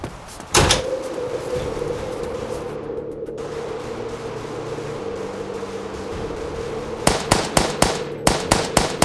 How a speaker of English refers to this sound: 5 shooters in a truck in the parking lot. They're shooting at the house.